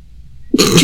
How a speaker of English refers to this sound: sorry, the cat distracted me. He's yelling.